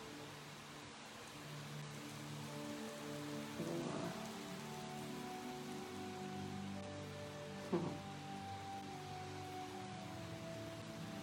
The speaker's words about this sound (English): Flame is dancing as the water's coming in, or the rain's coming down and the wind's coming in. All right, so this is lit, and got some great rain coming.